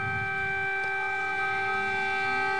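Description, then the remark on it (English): Air raid sirens drone continuously with a steady, held tone rich in harmonics, clear, with no voices over them; the sirens have been sounding on and off for 24 hours. “These sirens, by the way, have been off and on for 24 hours.”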